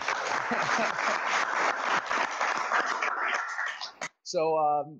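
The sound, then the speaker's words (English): An audience at the 2015 Power Athlete Symposium at Power Athlete HQ claps in a dense, sustained burst of applause for about four seconds after the first speaker, Rob Wolf, then it cuts off and a man's voice begins speaking. “Round of applause, everybody.”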